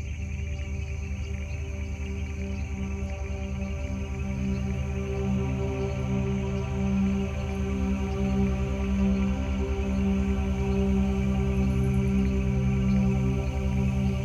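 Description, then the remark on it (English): A dense, steady chorus of African frogs calling together, layered trilling and droning tones that pulse continuously at an even loudness throughout, with no voices present. “Let's take a little listen to African frogs.”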